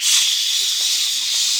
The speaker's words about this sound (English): Spray it. Spray it. Be more specific. I spray it at the chair so we can see the laser lines and duck between them.